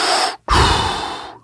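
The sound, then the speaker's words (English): A voice imitates Darth Vader's deep, menacing breathing: one raspy inhale, a brief pause, then a long, rumbling exhale, loud, with no talking. “Here you got that deep breathing.”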